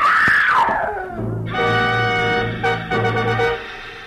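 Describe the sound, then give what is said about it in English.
An old woman screams: a high wail slides downward, then breaks into a loud, harsh, sustained cry that wavers for a few seconds before cutting off. No one speaks. “Inside, I found an old woman whom I figured to be my client leaning against the half-open kitchen door, sobbing and clenching at the gingham apron she wore like it would keep her from screaming again.”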